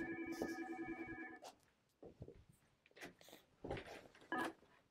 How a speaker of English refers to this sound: My phone's ringing. That's something new. It's probably Pastor Sam.